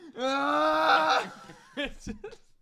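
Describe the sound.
A person imitates the Tom and Jerry cartoon scream: one long, strained, high-pitched wail held for about a second, then a few short, lower vocal yelps and grunts trail off.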